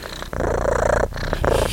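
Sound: cat purring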